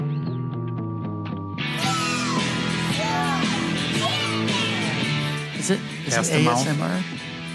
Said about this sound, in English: If you listen close, you can hear kids screaming.